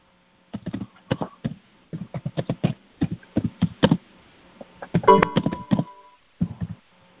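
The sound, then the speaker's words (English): Keys clack on a computer keyboard as someone types answers to questions, in quick, uneven bursts of taps with short pauses between runs, fairly loud and dull-toned, with no one speaking. “Is that you typing? Yeah, I'm answering questions.”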